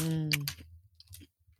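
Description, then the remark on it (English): Crunching of a crunchy Cheeto: a few sharp, brittle crunches, two quick ones near the start and another a moment later, following a brief hummed voice. “Wow, that's a real satisfying crunch.”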